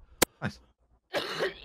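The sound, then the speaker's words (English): A phlegmy cough played from a soundboard cough button, fairly loud: a sharp initial hack and a short cough, then after a brief pause a longer, harsh, rattling cough. No talking. “Let's get that phlegmy cough button in here.”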